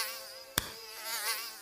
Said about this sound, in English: stupid mosquitoes.